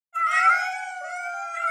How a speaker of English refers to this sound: Oh no, the feral cats!